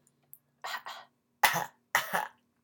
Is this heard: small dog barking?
no